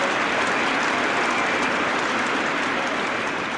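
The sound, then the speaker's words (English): A large crowd on its feet applauding Trescothick for making his 100 on his return to the side at a cricket match: a dense, continuous roar of clapping that holds steady and loud throughout, with no voices standing out. “And just for a second before Jeff Boycott comes in, let's hear the reception he's getting from a crowd who've got to their feet to applaud him.”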